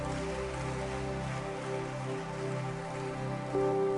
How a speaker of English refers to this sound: Amen. Let's give another clap offering to Jesus tonight.